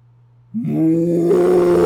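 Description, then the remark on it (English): A man's voice imitates a bear's roar: after a moment of low hum, a loud, sustained, throaty bellow swells up and holds steady to the end, alone. “Dude, have you ever heard my bear call?”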